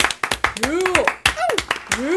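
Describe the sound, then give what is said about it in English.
Scattered, irregular hand claps from a live audience, sharp and fairly loud, mixed with voices calling out and whooping over them. “Let's hear it in the crowd, in our live audience.”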